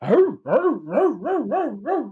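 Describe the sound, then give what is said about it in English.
A dog barks six times in a quick, steady rhythm, each bark rising and falling in pitch with a slightly yelping, singsong quality. It is loud, with no talking. “Glad that he's barking now”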